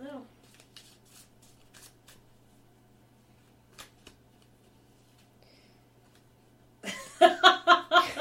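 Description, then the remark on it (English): Soft shuffling of tarot cards with light riffling clicks and rustles for several seconds, then a loud burst of laughter-like voice sounds takes over at the end. “She's been shuffling for like 45 minutes.”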